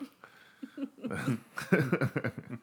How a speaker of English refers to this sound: Get that last burp out. Sorry. Get all the burps out.